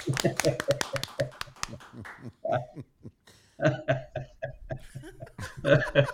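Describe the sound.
A short burst of scattered clapping from a few people, mixed with chuckles and laughter, then voices talking, with a few more claps near the end.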